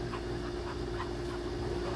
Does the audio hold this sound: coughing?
no